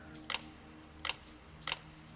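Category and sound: camera shutter clicking repeatedly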